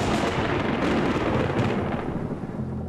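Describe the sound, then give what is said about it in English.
A deep, continuous rumble of thunder from a lightning storm rolls through the whole stretch, loud and broad, with no voices over it. “I love a lightning storm.”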